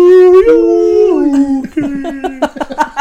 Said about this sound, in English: A whale would be more likely. There's going to be a whale noise there.